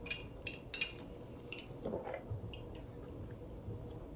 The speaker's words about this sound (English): sip my chlorophyll.